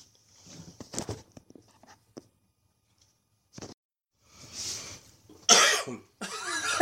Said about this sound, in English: You can't cough when we're not recording. He waits till the 1 second, raises his eyebrows, cough.